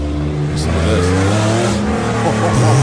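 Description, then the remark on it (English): A Porsche car engine with a titanium exhaust revs loudly and steadily, its low growling pitch rising and falling in sweeps, with faint voices underneath. “This car, here, wait, can you play that?”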